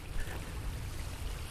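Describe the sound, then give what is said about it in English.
Steady rushing and gurgling of a flowing creek, continuous, with dense low-end turbulence and no voices. “You can hear the water.”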